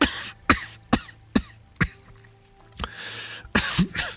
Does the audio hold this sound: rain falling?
no